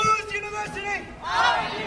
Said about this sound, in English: A big crowd of people, many of them holding picket signs, chanted and marched in circles all around Bunch Hall, one of about five places they were demonstrating on the UCLA campus.